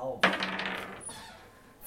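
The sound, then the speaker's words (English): Dice clatter onto a hard tabletop, with one sharp impact and then a short rattling tumble that fades out quickly. No voices are heard. “Hope for a crap roll. Everyone going to look and jinx my dice.”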